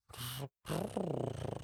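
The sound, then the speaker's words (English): A voice imitates the purr of Turtleton, a turtle character: a brief steady hum, a short pause, then a longer rolling, rhythmically pulsing vocal rumble. “Turtleton does purr.”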